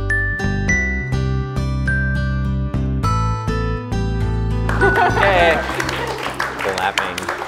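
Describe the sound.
Rhythmic music with steady, punchy chords plays, then gives way to a dense wash of audience clapping at a live event celebrating the book Slow. The clapping continues to the end, with a few voices mixed into the crowd noise.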